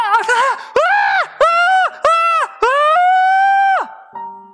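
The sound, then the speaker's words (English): A person imitates a hungry, unweaned baby sobbing and screaming for milk: a shaky, broken start, then four loud, drawn-out wailing cries that bend up and down in pitch, separated by brief pauses. “When they're whining because they need milk, they are sobbing and screaming.”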